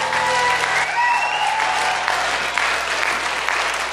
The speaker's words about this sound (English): Come on, you can put a better hand clap together for the Lord. Amen.